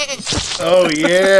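A breathy rasp opens into a single loud, wavering goat bleat that quivers in pitch and holds for nearly a second, clear.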